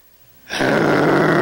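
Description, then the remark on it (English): A voice imitates a German Shepherd's deep growl: after a brief hush, a loud, rough, sustained snarl begins abruptly and holds steady, harsh, until the end. “Over here to my right, I hear a roar.”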